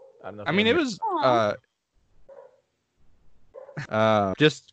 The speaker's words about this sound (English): Oh, my dog is barking.